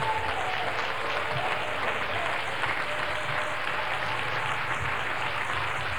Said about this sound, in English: Oh, let's give the Lord a good hand clap.